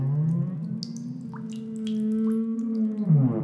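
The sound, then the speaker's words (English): A deep, drawn-out whale-like moan that wavers and slides in pitch, muffled from the other side of an elevator door, with faint dripping plinks scattered over it. “More like... A whale.”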